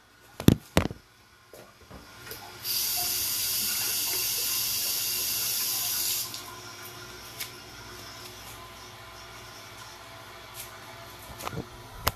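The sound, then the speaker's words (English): A toilet flushes: a couple of sharp clunks, then a loud rushing hiss of water for about four seconds, tapering into a softer trickle as the tank refills. No one speaks. “You hear that, America? That's a toilet flushing.”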